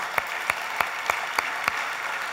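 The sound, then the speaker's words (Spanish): An audience at the church CEFADCHURCH applauds a woman of the church in a steady, dense wash of clapping, with about six sharp, evenly spaced claps ringing out above it in a regular rhythm. No one speaks. “Hermana Silvia Chica, le damos un aplauso a la hermana Silvia.”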